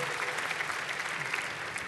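An audience claps steadily for two seconds, a dense, even patter of many hands with no voices over it, fairly close and moderately loud throughout.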